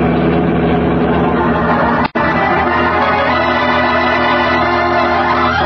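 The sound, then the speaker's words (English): Batman's powerful Batmobile roars loudly and steadily through the streets with the accelerator pressed to the floorboards, a rich, rumbling engine tone cutting out for a split second partway through before surging on at full volume. No one speaks. “Pressing the accelerator down to the floorboards, Batman sends his powerful Batmobile roaring through the streets.”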